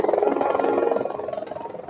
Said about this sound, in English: Now this bigger drone might have somebody in it. It's Nova Gene Labs.